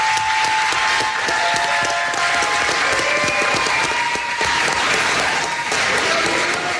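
Loud, sustained applause from a large audience fills the whole stretch, a dense wash of clapping with some cheering voices mixed in, steady throughout, as the audience applauds a program director who comes up to take a bow.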